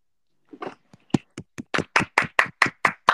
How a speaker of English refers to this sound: Everybody clap